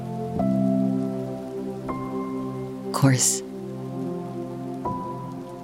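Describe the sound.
Steady rain patters on a surface beneath soft, sustained musical tones, with a brief spoken phrase and a short, louder burst of noise partway through.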